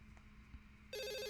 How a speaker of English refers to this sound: you do get a phone call that evening